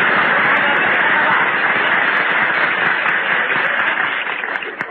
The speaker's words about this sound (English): I want to hear some kind of noise. Applaud me, folks.